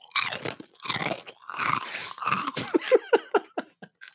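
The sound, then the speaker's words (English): Loud crunching as someone bites and chews a crispy fried chip like a fried rangoon wrapper: a few big crackly crunches, then quicker, smaller chewing crunches tapering off. No talking. “It looks like a fried Rangoon wrapper thing, and that's what it tastes like to me, fried but chips.”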